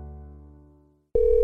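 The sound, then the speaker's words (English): A fading musical tone dies away into brief silence, then a loud, steady electronic telephone ring cuts in abruptly and holds, clear, with no voices. “I was afraid to answer the phone.”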